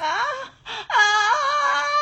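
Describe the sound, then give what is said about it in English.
A woman's loud, wavering scream, a brief cry that breaks off for a moment and then returns as a long, sustained wail with a sliding pitch. No one speaks. “And she screamed. She screamed. Guys, you heard it. She screamed.”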